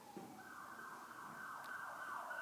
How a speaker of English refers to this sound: Jesus, we just pray for that ambulance right now.